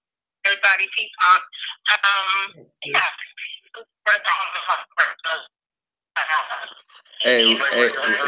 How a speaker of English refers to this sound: your phone breaking up. There you go. You sound better now.